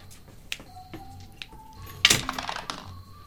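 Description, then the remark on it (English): Dice rattle and clatter across a hard tabletop as players roll perception checks: a few scattered clicks, then a denser burst of tumbling taps that settles quickly. Fairly quiet, with no voices. “So as all of you pass into the northern section of the forest, I'm going to need you all to roll perception checks.”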